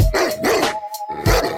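A dog barks loudly several times in quick succession, gruff, with a brief pause before a final bark, while a steady sustained musical tone hums underneath; part of a jingle for the Big Dog's Outhouse segment on Inside the Cave.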